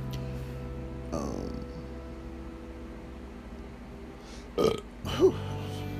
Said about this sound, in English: No way, when you drink like Coca-Cola or something, just like you get the burps. It's crazy.